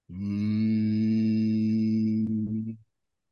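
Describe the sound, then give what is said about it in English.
A single steady hum made through the nose with the mouth closed and the ears gently blocked, held at one low pitch for nearly three seconds, rich in even harmonics, loud and unbroken before stopping abruptly, with no talking. “You close your mouth and you make a humming noise, and I'll do this first, through your nose.”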